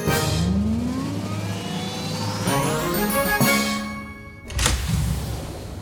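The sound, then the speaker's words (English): A sci-fi time machine sound effect: a steady whirring hum with tones that sweep upward in pitch, building to a sharp burst, then a brief drop and a final whoosh. No one speaks. “Okay, let's jump in our pretend time machine and start time traveling.”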